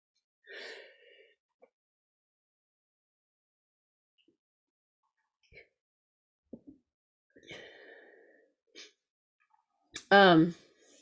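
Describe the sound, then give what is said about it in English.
A couple of breathy, wheezy intakes, then a loud, sharp sneeze with a voiced, falling tail near the end; quiet pauses in between and no clear speech. “We'll have to edit up the sneezing in the actual podcast version.”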